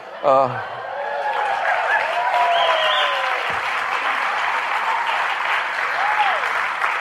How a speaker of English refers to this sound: You get applause for that? I mean, for turning 70? He's still standing. Yeah, that's what you get the applause for.